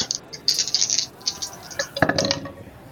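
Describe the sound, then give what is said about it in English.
Three dice rattle briefly in a cup or hand during a tabletop game roll, a quick burst of small clicks, then clatter onto a hard surface with a sharper tumble of ticks that fades out. No one speaks. “Two or three dice on that? Three dice.”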